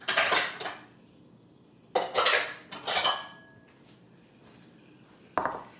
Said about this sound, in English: And now we need to pour this into a bowl just to cool it down quicker. You can just leave it in the pot, but then it takes longer. And I don't want to dip my fingers into boiling hot simple syrup. So into a bowl it goes.